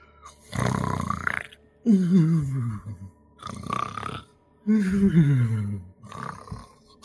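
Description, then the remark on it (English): A person loudly imitates snoring, alternating rough, raspy inhales with deep, droning, falling exhales, repeating about two and a half times in a steady rhythm, with no other talking. “you snore like a fool.”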